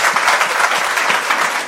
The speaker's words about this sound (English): Amen. A round of applause.